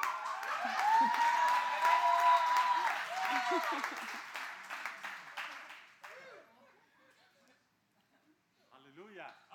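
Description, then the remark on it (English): An audience applauds steadily for about six seconds, dense clapping with a high whistle or cheer riding over it, before the applause dies away and a faint voice follows. “You should clap for him as you did for me, or he will be upset.”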